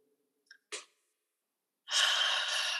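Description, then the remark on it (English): Ujjayi Pranayama breathing: a faint click and a short soft breath, then a long, steady, loud hissing exhale through the throat with the mouth closed that carries on to the end without any talking. “You can do a gentle Ujjayi Pranayama, where inhalation is normal, and when you exhale, you can make a hissing sound through the throat.”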